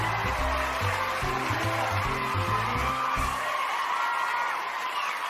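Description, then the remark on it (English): A crowd applauds, welcoming the guests and host of the Narrative After Show, in a dense, steady wash of clapping with some cheering, while a bouncy bass-heavy music sting plays underneath and cuts off partway, leaving the applause alone. “Aren't they nice to be clapping for us?”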